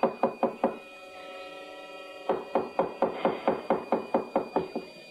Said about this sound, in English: Oh, now, please. Don't batter down the door.